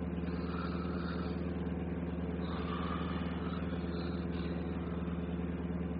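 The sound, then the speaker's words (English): A bus motor runs steadily, a constant low, rumbling drone with a droning hum that holds at an even level throughout, with no voices. “you're snoring louder than the bus motor.”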